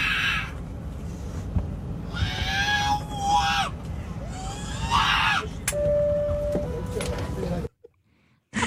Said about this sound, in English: It is a baby on a plane. This was posted to TikTok, and someone just posted the audio and a picture of their deadpan face going, he sounds like R2-D2.